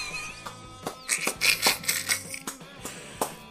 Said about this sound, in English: Slow clap. That was good.